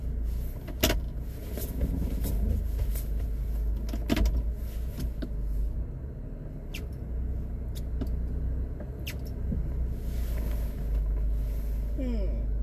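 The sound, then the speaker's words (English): A car slowly maneuvers while trying to parallel park in a tight spot on a campus. Its engine is a steady low rumble heard from inside, with scattered sharp clicks and brief mechanical whirs throughout. “Yeah, I don't think my car can even fit here.”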